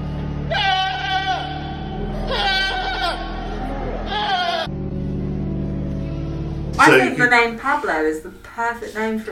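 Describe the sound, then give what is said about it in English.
A goat bleats three times in quavering, wavering cries over a steady low hum, before a louder, busier stretch of voice-like sound takes over near the end. “What should we call this goat?”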